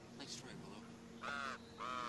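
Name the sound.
crow cawing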